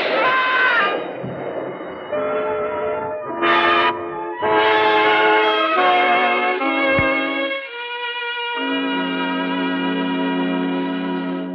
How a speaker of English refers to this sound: You're waiting for the elevated train. You're waiting for the elevated train to drown out the shot.